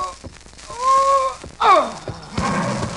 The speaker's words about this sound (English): Well, woman, here's your horse.